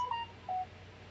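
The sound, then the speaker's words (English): Two short electronic phone beeps, evenly pitched tones about half a second apart, fairly loud over a low background hum with no talking. “My phone kept going off.”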